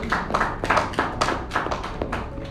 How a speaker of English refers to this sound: I thought you clap your hands for Jesus.